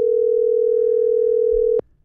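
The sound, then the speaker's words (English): A steady, unbroken telephone dial tone hums loudly for nearly two seconds, then cuts off abruptly with a click as a call is placed to an insurance agent. Nobody speaks. “Yeah, let's call Fletcher.”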